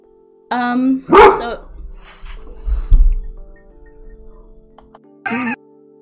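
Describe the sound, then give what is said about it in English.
A pet dog barks loudly, two quick barks in a row, then a pause with low background noise before a single final bark. “Anyway, I hate my dog so much.”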